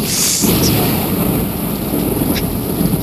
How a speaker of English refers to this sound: I'm guessing Miami has got some rain too, if I hear this. No, I just want to make sure to let John hear it outside his window.